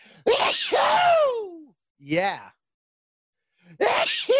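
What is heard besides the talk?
sneezing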